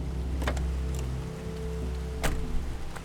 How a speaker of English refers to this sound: As the first detective's car squealed in, fat raindrops fell from the sky.